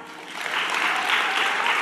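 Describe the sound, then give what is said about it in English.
A crowd claps steadily, a dense wash of many hands that swells after the first half-second and holds at an even, moderately loud level with no voices on top. “Let's put our hands together if we can relate to Mom Guilt Molly.”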